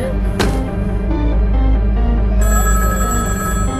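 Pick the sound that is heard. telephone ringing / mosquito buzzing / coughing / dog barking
telephone ringing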